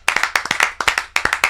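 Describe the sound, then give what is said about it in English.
A brief burst of applause for a guest on the Hype City show: sharp, rapid hand claps in a quick, uneven rhythm, fairly loud and crisp, with no voices over them. “Round of applause.”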